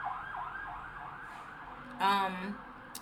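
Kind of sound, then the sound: vehicle, ambulance siren passing outside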